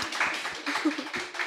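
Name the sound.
room clapping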